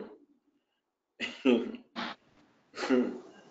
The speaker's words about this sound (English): I am also coughing. It is true. I am also coughing. Well, am I not a human being? I am also coughing.